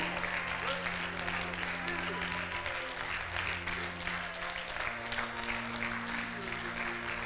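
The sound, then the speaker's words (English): A large audience claps steadily and continuously throughout a worship service led by a pastor, a dense wash of overlapping handclaps, with sustained low organ-like tones humming underneath. “Come on, clap your hands.”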